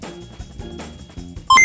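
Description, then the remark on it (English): A music bed plays, then a loud burst of electronic beeps and boops from a calculating computer sound effect used for scoring a game at the very end, sharp tones jumping in pitch in quick succession. “let's hit that calculating computer.”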